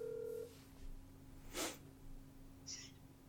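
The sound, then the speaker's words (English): An outgoing phone call: a short steady tone, then a burst of line noise and a brief high electronic beep as the number dials and connects. Quiet, with no talking. “So let's see if he's man enough to answer his phone.”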